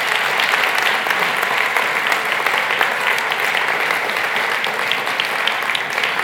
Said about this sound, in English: And so I'm going to welcome the musicians and the singers back up. Can we give them a round of applause, by the way? Because they do such a fantastic job.